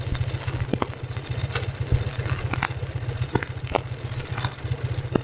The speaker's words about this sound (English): This is the same engine with a new high-tension lead fitted to the sparking plug.